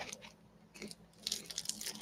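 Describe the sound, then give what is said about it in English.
Crunchy chewing on Goldfish baked cheesy pizza flavor blast crackers: a run of crisp, crackly bites with sharp bursts, faint at first and growing louder toward the end, with no talking. “But yeah, if you don't know, I'm also eating some gourmet food. Some goldfish baked cheesy pizza flavor blast.”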